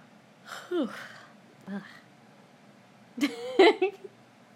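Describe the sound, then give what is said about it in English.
Breathy yawning: a drawn-out voiced yawn, a brief softer breath, then a longer, louder groaning yawn near the end, all against a quiet background with no talking. “Quit yawning.”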